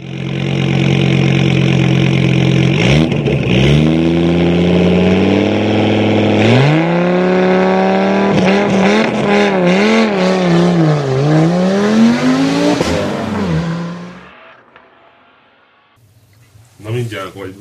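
A loud car engine revs for about fourteen seconds, its pitch climbing and dipping in repeated surges, then cuts out, leaving near silence before a brief burst of sound at the end.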